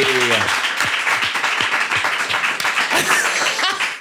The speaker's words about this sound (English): Please, can we have a round of applause for National Treasure, the one, the only, Miriam Margolyes, everybody.